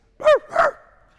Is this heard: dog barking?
yes